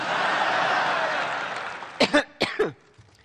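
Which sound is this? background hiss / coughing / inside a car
coughing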